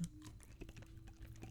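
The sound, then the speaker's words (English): Crisp crunching from someone chewing something crunchy, a rapid run of sharp crackly bites and grinds over about a second and a half, with no talking. “Oh, it's crunchy.”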